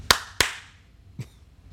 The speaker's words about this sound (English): Well, then I think from the shadows, you just hear a clap.